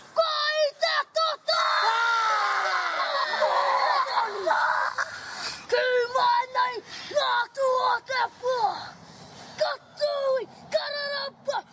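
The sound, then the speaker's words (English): A group performs a Māori haka from Whanganui called Mangu Taipo, used in a short film: loud, forceful chanted shouts in unison, a long sustained opening cry followed by sharp rhythmic bursts of voices with brief pauses between them. “Is the haka here from Whanganui? Yep, it's called Mangu Taipo.”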